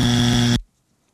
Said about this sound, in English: And no ums or ahs to start your answer. No ums or ahs to start your answer. That will result in an immediate buzzing.